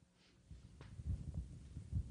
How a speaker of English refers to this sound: Oh, I've never noticed that before. There's a heartbeat at the beginning. Yeah. How heavy-handed.